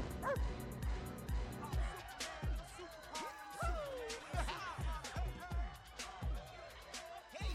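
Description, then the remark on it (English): Dog barks and yips repeat over a steady, pounding dance beat played by a DJ at a party, loud, with busy party noise underneath throughout. “Hit it, DJ. Wonder Dog.”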